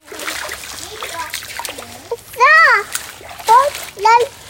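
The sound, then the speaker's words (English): Steady splashing and sloshing of water as feet stomp through a shallow creek at Keosauqua State Park in Iowa in summer, with children's excited high-pitched voices and squeals rising over the watery noise. “This is me creek stomping with my niece and nephew at Keosauqua State Park over this summer, which is about a 20-minute drive from the little Iowa town”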